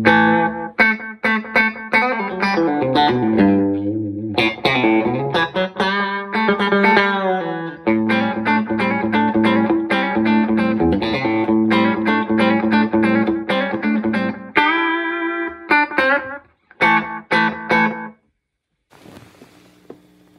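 Electric guitar played through an analog delay pedal set for slapback: quick, choppy picked notes and chords with a short slapback echo, loud with no voices, then breaks off into a few scattered notes and a faint hiss.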